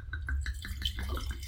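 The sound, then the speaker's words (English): Dark purple red wine glugs out of an opened bottle into a glass, a quick run of bubbly, gurgling pulses over a low background hum, with no one talking. “So, but now that you've scared me into what we're going to drink, will you pour our wine?”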